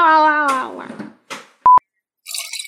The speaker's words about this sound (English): What was that disgusting noise? I had some like of this like tea and I took a drink and it was super cold, so it tasted gross, so I spit it back into the...